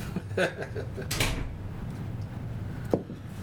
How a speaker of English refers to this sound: We built a restroom just for him. Yeah. Let's close the door for your flush.